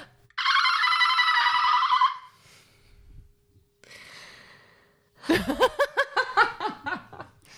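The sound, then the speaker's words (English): A person mimics a dolphin: a long, shrill, warbling squeal, a breathy pause, then a rapid burst of high-pitched chattering clicks and squeaks. “You can make your dolphin noise if you want.”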